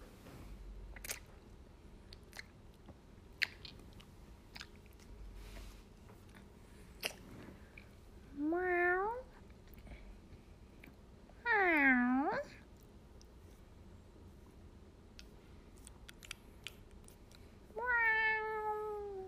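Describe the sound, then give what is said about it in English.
A person imitates a cat, giving three drawn-out, wavering meows spaced several seconds apart, fairly loud, with faint clicks and crunchy chewing-like noises scattered between them. “I can do the sound of a cat.”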